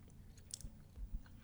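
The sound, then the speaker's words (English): Quiet chewing of a very chewy fruit candy, with soft, sticky mouth sounds and a few wet smacks, repeating irregularly for a moment with no talking. “It's so chewy that you can't even taste the flavor. Like, it just tastes like chewing on a rubber band a little bit.”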